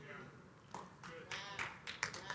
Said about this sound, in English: I got one clap.